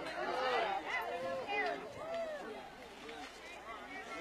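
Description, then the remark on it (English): Overlapping voices of an evening softball game crowd, with Lady Jacks and Lady Dogs supporters, chatter and call out at once, a steady murmur of many people with brighter shouts rising and falling throughout, no single voice standing out. “Good crowd here tonight.”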